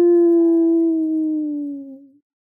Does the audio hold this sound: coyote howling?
yes